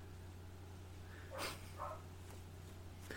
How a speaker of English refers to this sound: As the dog next door is just going freaking crazy right now.